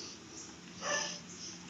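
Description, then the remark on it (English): A dog gives one short, breathy snort, a quick noisy puff of air that rises and fades within about half a second against a quiet background. No one speaks. “See, the dog does not approve.”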